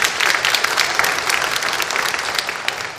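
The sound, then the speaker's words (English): A crowd claps steadily, a dense, continuous patter of many hands at a fairly loud level, with no voices over it. “The problem is, round of applause.”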